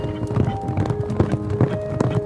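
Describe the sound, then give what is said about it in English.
A buckskin horse's hooves clip-clop in a steady, even rhythm on a hard surface as it is ridden away, each hoofbeat a sharp knock, with a faint low tone and steady background noise underneath. “That was when he decided to pick her up, get on his horse, and ride out.”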